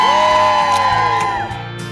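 A loud studio crowd at a Friday morning show, dressed in holiday wear, cheers and whoops continuously, with high rising and falling yells layered over a dense wash of applause-like noise, sustained for about two seconds.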